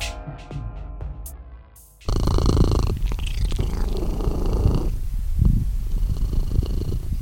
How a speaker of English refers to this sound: That happy little sound, by the way, that little kitten purring, was one Mr. Rupert Giles, who is one of the residents of my own private castle, Dracula.